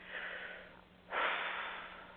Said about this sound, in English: Take a nice deep breath. Make sure you're comfortable. Sit back in your chair, uncross your legs, close your eyes.